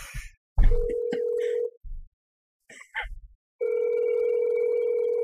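A phone call placed from a mobile phone to a relative rings out: a steady electronic ringback tone sounds for about a second, pauses, then starts again and holds. Faint handling noises fill the gap.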